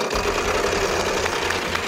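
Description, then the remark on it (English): A heavy game show wheel, given a final spin by Vanna, spins with a rapid, steady stream of mechanical clicks, dense and fairly loud throughout, with a low rumbling undertone and no voices. “I'm going to give the wheel a final spin.”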